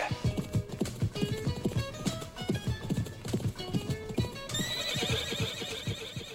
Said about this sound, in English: And that was a horse neighing.